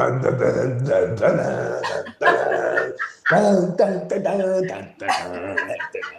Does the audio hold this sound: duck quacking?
no